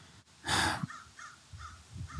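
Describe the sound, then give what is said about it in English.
A crow gives one loud, harsh caw, followed by a few fainter, shorter calls spaced out after it. There is no talking, just low background rumble. “I mean, good old crows. Good old crow.”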